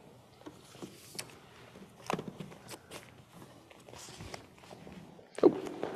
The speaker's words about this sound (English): I took my chair away.